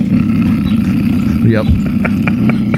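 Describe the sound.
An old Model T car engine roars with a loud, steady low rumble throughout, then a rising whine and several short, evenly spaced horn-like toots near the end; a voice speaks once briefly.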